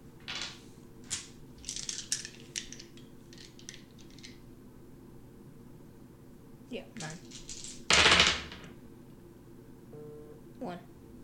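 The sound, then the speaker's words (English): A handful of nine dice clatter and tumble in quick bursts of sharp clicks, then a louder rattle as they are shaken and land, with a few stray clicks after and faint voices in the background; the dice are rolled for a ranged attack in a tabletop game. “Then you roll nine dice.”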